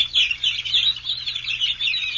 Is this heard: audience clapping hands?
no